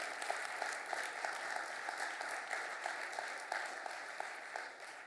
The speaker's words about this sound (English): I think you should give a round of applause to the Lord for his goodness.